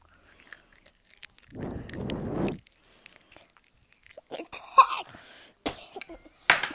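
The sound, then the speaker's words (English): Crunchy biting and chewing of a leaf, followed by a burst of coughing and throat clearing, with small mouth noises and rustles between. “eat a leaf and review it to us, okay?”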